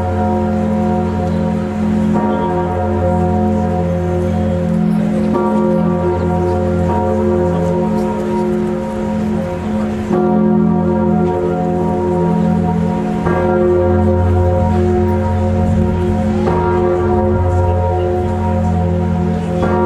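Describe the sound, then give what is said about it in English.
Emmanuel, the huge bourdon bell of Notre Dame de Paris in France, cast in 1686 by Chapelle, Guillot and Moreau and pitched at F sharp, tolls slowly and loudly, each heavy strike arriving every few seconds while its low, humming resonance rings on and overlaps the next. No one speaks. “For the world's best Borden goes to Emmanuel at Notre Dame de Paris in France.”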